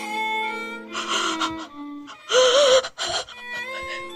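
sharp gasp

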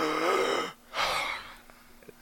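gasping

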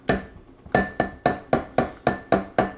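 glass clinking

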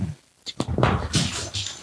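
dogs whimpering

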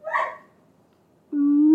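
dog whimpering

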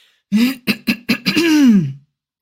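throat clearing

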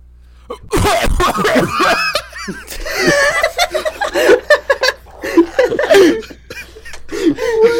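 throat clearing

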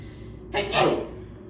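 sneeze

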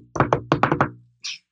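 knocking on wood

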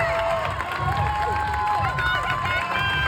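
crowd cheering

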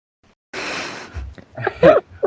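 yawning

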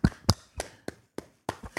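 hand clapping

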